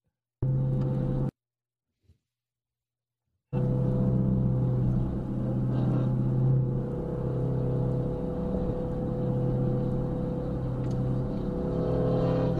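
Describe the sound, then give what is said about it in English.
A loud, steady police car engine drones with a deep rumble, as if from inside the fast-moving car; it cuts out briefly near the start, then runs on continuously. “So we're in a police car?”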